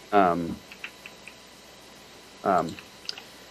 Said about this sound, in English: I'm trying to type and I can't type and talk at the same time.